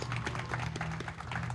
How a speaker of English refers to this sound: So a big round of applause, ladies and gentlemen, LA Galaxy General Manager, Mr. Dennis DeClosa, making his way up here.